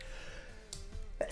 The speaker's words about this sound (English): Oh, I'm so triggered. I'm sneezing. You're allergic to loss.